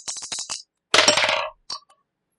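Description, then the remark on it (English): New dice are rolled for a strength check in a tabletop game, rattling and clattering across a hard tabletop in a quick run of sharp clicks, then a louder tumbling burst and a couple of small final taps, with no talking. “Maybe these new dice aren't bad.”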